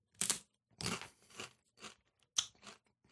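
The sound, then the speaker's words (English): A lightly spiced crunchy chip being chewed: six or so loud, crackly crunches in an uneven rhythm with short pauses between bites, bright and sharp, and no voices. “Okay, so it's a chip.”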